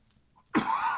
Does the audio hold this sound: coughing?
yes